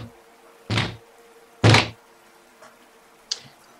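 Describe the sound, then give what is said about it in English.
A hammer bangs three times with solid, resonant thuds: two loud strikes close together, then a softer third after a pause. Nobody speaks over them. “We will now conclude this as he bangs his hammer 3 more times.”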